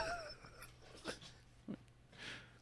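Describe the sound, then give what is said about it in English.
A dog wheezes and snorts in short, raspy bursts, a couple of sharp snuffling puffs breaking through quieter labored breathing, with no one talking. “Dog is allergic to volcano movies.”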